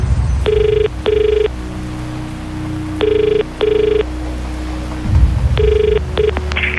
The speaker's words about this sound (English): At 7:55 a.m. on the 19th of August 2019, I was fast asleep. The phone woke me up.